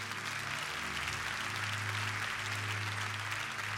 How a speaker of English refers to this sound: Let's clap our hands